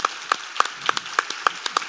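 Steady, brisk hand clapping with sharp, regular claps about three per second and softer claps scattered between them, like a small group applauding. No voices are heard.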